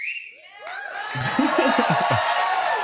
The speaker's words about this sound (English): Didn't it kind of sound like the crowd's applause sign came on a little late? Exactly. Yeah. Like there's a little delay.